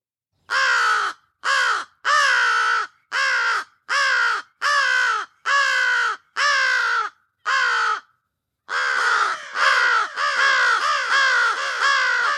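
American crows cawing loudly, a steady series of harsh, rasping caws, eight in a row, a short pause, then several more overlapping calls from a whole family of crows.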